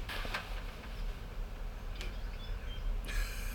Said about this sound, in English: Should we turn off the birds? Because I can't stop hearing them.